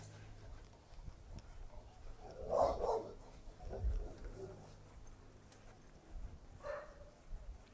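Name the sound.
big dog barking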